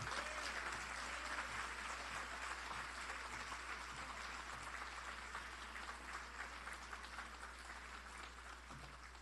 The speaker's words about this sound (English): Mayor, another round of applause for her inspiring words.